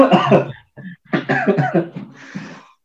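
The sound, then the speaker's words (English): A loud coughing fit: several harsh, rapid coughs in clusters with brief pauses between them, trailing off into a few raspy, breathy hacks at the end. “That's not a COVID cough.”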